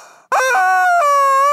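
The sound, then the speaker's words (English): A rubber chicken toy named Edwina, used as a lightning-round signal, lets out a long, loud, nasal squawk that wavers in pitch, breaking once midway before continuing as a sustained, strained honk with no talking over it. “She's a rubber chicken.”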